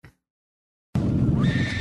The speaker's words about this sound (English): I'm going to guess gorilla. Correct. Thank God. Damn it, I knew it was gorilla.